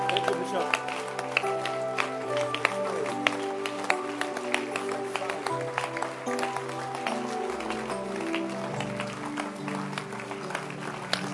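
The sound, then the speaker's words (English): A church audience claps continuously in a dense, steady patter that lasts the whole time, while a man's voice carries on loudly over the top, telling them to clap their hands and not stop clapping. “Don't stop clapping.”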